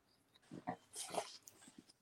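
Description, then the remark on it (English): A small dog that has just come into the room makes a few quiet, short grumbling growls in quick succession, with brief snuffly bursts in between, heard faintly and alone with no talking. “Sorry, my little dog just came in here.”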